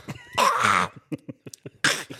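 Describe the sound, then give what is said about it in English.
A voice imitates the snorting, sniffing and spitting a man made while urinating: two long, harsh, throaty bursts with a string of short, sharp snorts and spits between them, fairly loud, with no talking. “like spitting, like just like sniffing and spitting and farting. Snorting, just that's that kind of noise, right?”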